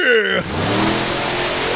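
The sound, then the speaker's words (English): A big monster truck engine revs up loud, settling into a thick, steady roar after a brief falling whine at the start. “Benjamin Franklin, inventor of the monster truck rally.”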